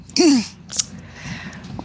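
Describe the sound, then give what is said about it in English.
A single loud sneeze bursts out, a short voiced catch collapsing into a harsh breathy hiss. A quick sharp sniff follows, then faint background murmur. “God bless you.”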